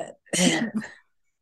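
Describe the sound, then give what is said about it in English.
A single loud, raspy burp, lasting under a second, with a brief guttural rumble and a short breathy noise just before it. “I did burp, but you know how sometimes you burp too much and it come up a little bit, bitch.”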